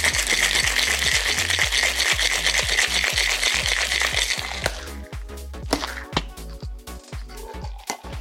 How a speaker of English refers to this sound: Get some ice in there. Fill your Boston glass right up. Tin on top. Give it a shake.